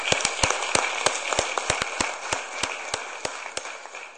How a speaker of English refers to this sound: Let me thank the members of the panel for a wonderful discussion. We learned a lot today, and your expertise has helped us enormously in grappling with this complex issue. So let me ask my colleagues to join in a round of applause.